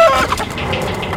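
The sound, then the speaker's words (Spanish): A brief, loud burst of hens clucking and squawking, with a rooster's crow rising over the flock at the start. “¡Y las gallinas se han dado cuenta a dónde fue a parar el huevo de oro!”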